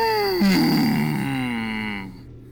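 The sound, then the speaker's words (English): A person imitates a sad whale: one long, mournful vocal moan that drops in pitch, then holds a low, wavering drone for about two seconds before trailing off. “What kind of noise does a sad whale make?”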